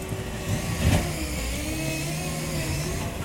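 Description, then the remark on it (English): Heavy engines of a contractor's construction truck and a digger hard at work in a street in Francisville, Philadelphia, rumble steadily, with a low droning motor and a brief surge of revving near the start, no voices. “Most mornings as I leave my house, I find the street blocked by a contractor's truck with a digger hard at work, obliterating the day's peace.”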